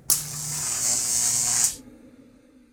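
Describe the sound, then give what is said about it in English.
A harsh, hissing electrical crackle buzzes steadily for about a second and a half over a low hum as the lights suddenly go out in a blackout, then cuts off abruptly, leaving only faint background noise. “As the electricity crackles and the lights suddenly go out, a convenient blackout envelops Robert Murdoch in darkness.”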